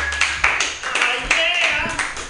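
Applause from a crowd, a steady wash of clapping with sharper bursts scattered throughout, mixed with a few high cheering voices rising over it.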